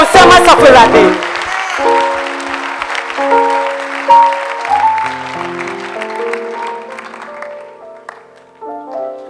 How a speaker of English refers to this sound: Are you clapping your hands for Jesus?